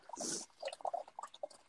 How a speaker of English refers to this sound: Okay. I'm just adding the water to my machine.